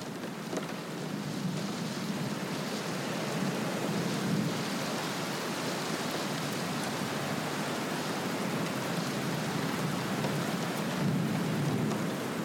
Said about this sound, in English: I hear rain against the window. I love the sound of rain. It's percussion.